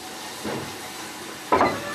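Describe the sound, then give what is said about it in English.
A steam locomotive on the West Somerset heritage railway hisses steadily, a broad continuous wash of steam noise, with a brief swell near the start and a sharper, louder puff of steam toward the end. No voices. “Bathed in steam and nostalgia, plenty of us hanker after a way of life that the 21st century has all but ended.”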